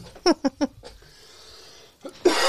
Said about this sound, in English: I had a lot of seltzer just going on the wrong pipe, so pardon my coughing.